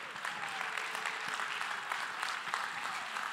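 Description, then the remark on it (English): An audience at a sermon applauds steadily, many hands clapping together in a dense, continuous burst that holds its level throughout, with a bright, even patter. “Can you clap hands for the...”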